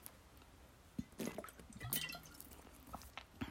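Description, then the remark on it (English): Quiet sipping of water: a few soft wet slurps and swallowing clicks scattered over a few seconds, with faint liquid movement in between and no talking. “Let me just take a sip of me water.”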